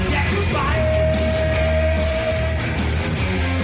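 A loud vocal shriek held on one steady pitch for about two seconds, rising over a dense, continuous wash of loud recorded music with no pauses.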